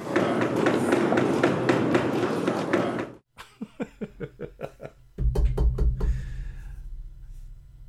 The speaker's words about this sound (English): Hey, knock if you hear me.